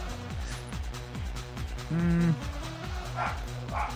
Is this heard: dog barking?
yes